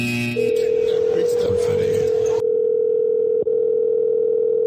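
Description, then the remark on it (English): A steady, loud telephone dial tone hums continuously for several seconds while a call is being redialed, with a brief burst of background voices and line noise over its first half before the tone continues alone. “I'm gonna hang up. I'm going to call you right back.”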